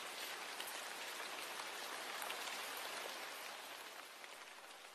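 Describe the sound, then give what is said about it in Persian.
Steady rainfall with a dense, even hiss of countless drops striking a surface, continuous throughout and easing slightly toward the end, with no voices. “یا اصوات طبیعت مثل صدای جریان آب یا صدای بارون یا صدای پرنده ها که چه هارمونی های جذاب و زیبایی هستن و حس خوبی رو در ما به وجود میارن.”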